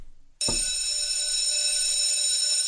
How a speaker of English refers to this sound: So now that school's over, ladies and gentlemen, and the fire drill has gone off, and we've all gone home, we've all calmed down,